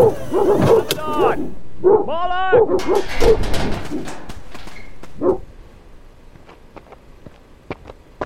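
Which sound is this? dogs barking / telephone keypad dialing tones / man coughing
dogs barking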